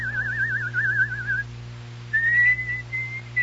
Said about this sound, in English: Oh, hush. You don't like the bird's song, sir? The bird? I thought it was my own mind. That's the song I've been hunting for. Who taught it to him? I don't know, sir. A traveler sold him to us. The man said he had bought the bird in Salzburg